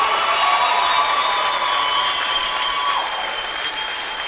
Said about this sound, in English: If you believe it, clap your hands again.